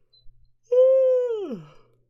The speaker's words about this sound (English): Sorry, quick little yawn for me.